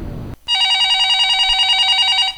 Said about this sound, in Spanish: ¿cuál no fue su sorpresa? Cuando, en cuanto entraron, sonó el teléfono.